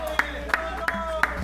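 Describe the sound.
Applause for a cosplayer called up to the podium comes through as four slow, evenly spaced claps standing out over a steady background hum and faint voices, sounding like a sparse round of clapping.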